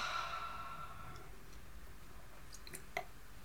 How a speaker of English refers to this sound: And letting out another yawn, and a sound.